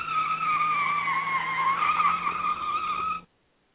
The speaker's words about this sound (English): So anyway, there wasn't much of a crash with that. No, just a squeal.